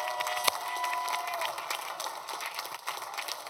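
An audience claps their hands together in a dense, steady wave of applause that holds at an even level for the whole stretch, with a few sharper individual claps standing out.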